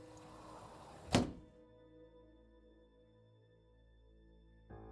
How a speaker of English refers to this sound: Then suddenly, the door opened.